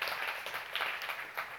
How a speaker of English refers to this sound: And so give yourselves a round of applause for that. I want to say thank you for that.